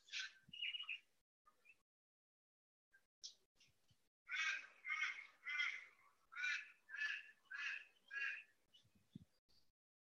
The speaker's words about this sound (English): Every now and then I can hear some bird noises.